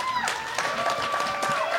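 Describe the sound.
An audience applauds to vote for a competing pair in a contest, a steady, dense wash of clapping, with cheering voices and a high sustained whistle riding over it throughout.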